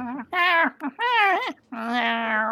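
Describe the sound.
A person imitates a cat purring loudly with their voice: three drawn-out, humming vocal bursts, the last one longest and steady, clear with short pauses between them.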